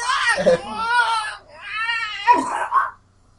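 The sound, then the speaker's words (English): A person voices an exaggerated imitation of a cat hacking up a hairball: two loud, strained, wavering gagging wails with harsh retching bursts, ending abruptly. “It was a hairball. She's fine. The cat is fine.”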